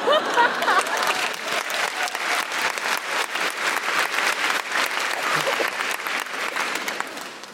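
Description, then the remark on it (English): A crowd claps steadily and loudly for several seconds, a dense crackle of many hands with no pauses, easing only slightly toward the end. “Now, I don't mean to make you feel bad, but what you've applauded there is white privilege.”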